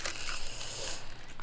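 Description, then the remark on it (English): Continuous crinkling and crackling of plastic packaging as it's cut open with scissors and pulled open, with brief snipping-like rustles throughout and no one talking. “Oh, need scissors, don't I? That's not going to open itself.”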